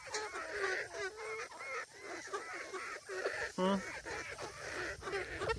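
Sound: chickens clucking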